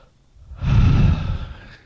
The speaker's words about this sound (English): Yawn.